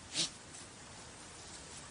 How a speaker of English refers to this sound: Remember, the sneezes happen when one of the dogs rallies the pack to go hunting. Hallie Walker was trying to discern the difference between a successful rally and an unsuccessful one. It turned out the sneezes were a strong indicator.